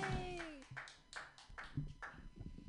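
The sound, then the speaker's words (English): A small comedy-show crowd claps in a steady rhythm for the first comedian, sharp bursts about twice a second, while a voice cheers briefly at the start and murmuring continues underneath. “Clap your hands wildly”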